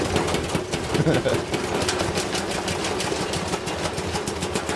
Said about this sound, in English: Something a little heavier this time. This is a YouTube channel where they throw things in washing machines and dryers.